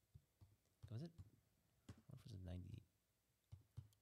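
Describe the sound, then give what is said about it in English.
A handful of soft taps click on a computer keyboard as someone types in a search for 'grocery getter', between stretches of talking voices, the keystrokes brief and scattered rather than a steady run. “I'm typing in grocery getter.”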